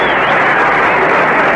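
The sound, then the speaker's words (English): A large crowd at a baseball game roars steadily with cheering and applause after a ball boy hands a foul ball to a youngster, a dense, loud wash of many voices and clapping that holds without pause for the whole moment. “Much to the delight of the crowd”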